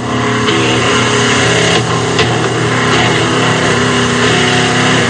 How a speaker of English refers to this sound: Hang on, ladies and gentlemen, it's a fast one. The motor's cutting out. He's drifting through the fourth turn slowly.